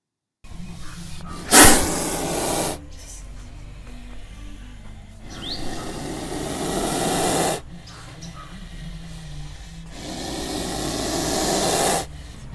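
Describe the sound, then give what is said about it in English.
A spitting cobra, a fanged snake of Asia and Africa, hisses three times, each a long, loud, breathy burst lasting about two seconds, separated by quieter pauses with faint background noise. “Spitting Cobra”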